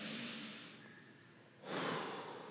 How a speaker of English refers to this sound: Would you put your arms out with your palms up, close your eyes, just a posture of surrender. Take a deep breath.